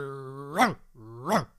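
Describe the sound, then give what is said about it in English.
A voice imitates an angry dog: two growls, each rising into a loud, sharp bark, in quick succession, with no other sounds around them. “Aren't we lucky to have heard that original recording of a dog in 1529 attacking a poor older gentleman in a back alley of Norwich.”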